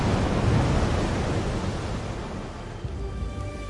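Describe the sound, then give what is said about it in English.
Ocean surf rushes in a steady, dense wash, strongest at the start and easing slightly, with faint tonal hints emerging toward the end; no voices. “With or without humans, I'm the ocean.”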